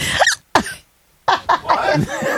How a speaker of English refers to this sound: Are those hiccups? What are those things you're making? What are those sounds?